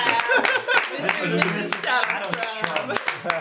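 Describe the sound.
Steady audience clapping for guests being thanked, a dense patter of many hands, continues under a man's voice talking over it throughout.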